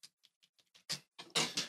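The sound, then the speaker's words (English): A quick run of soft clicks and swallows, then two or three louder, rough belching bursts from a burp after drinking tea, with no talking. “Excuse me, that was a tea burp.”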